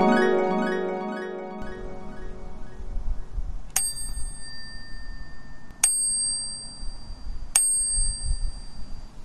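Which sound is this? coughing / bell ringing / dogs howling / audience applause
bell ringing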